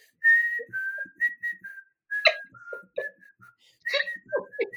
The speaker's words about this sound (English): I'm gonna whistle there. Hold on. Let me get my Kill Bill whistle.